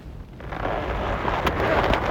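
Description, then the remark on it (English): A deep, roaring blast swells up and rumbles on steadily, a dense wall of low, noisy boom with no voices, like the sustained aftermath of an explosive charge going off. “Once he got to the gate, I gave him time to make the switch with the dummy before I set off the charge.”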